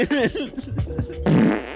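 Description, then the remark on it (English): A loud comedic fart sound effect: wobbly, squeaky sputters that bend in pitch, ending in a broad, raspy blast, all within about two seconds and with no talking over it. “Just kidding. I used another fart.”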